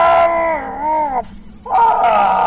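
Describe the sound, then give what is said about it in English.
A person at home reenacts pained screaming from back spasms: two loud, strained, drawn-out cries with wavering pitch, separated by a short breathy pause. “I've been home alone for the last week, so I have had no fear of screaming.”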